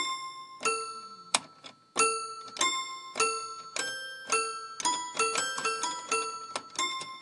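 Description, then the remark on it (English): A little J-Mar piano, about a foot and a half high with 15 keys, plays a jig in bright, bell-like plucked notes, starting with a few spaced tones and then quickening into a busy, bouncing run, with no voices. “It is about a foot and a half high and has 15 keys.”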